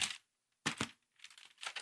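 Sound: paper page being turned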